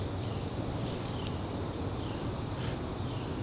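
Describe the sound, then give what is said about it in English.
Faint, scattered bird chirps of a Carolina wren, a few short notes spread over a few seconds, sitting low beneath a steady rushing outdoor background noise. No one speaks. “That kind of puttering sound is our Carolina wren.”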